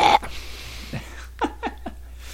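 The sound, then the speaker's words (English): A few short, squeaky meows from a female hypoallergenic kitten come in quick succession, each a brief falling cry, fairly soft against a quiet background with no talking. “Is she a kitten?”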